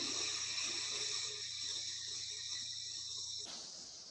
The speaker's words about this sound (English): Breathing in through the left. Blocking off, breathing out through the right.